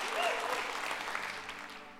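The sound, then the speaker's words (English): A church audience applauds its pastors steadily, a dense wash of many hands clapping at once, fairly loud and sustained throughout with no talking over it. “I really do want to, can we just give y'all's pastors a round of applause?”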